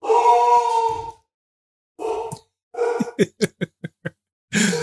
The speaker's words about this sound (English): Sounds like a big ass dog. Yeah, it's a lab. She's 80 pounds. She's a monster. Wouldn't hurt a fly.